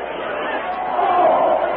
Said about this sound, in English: With the crowd fleeing in every direction, the great jungle beasts tossing and thrusting aside all who fail to get out of their path and converging upon Tarzan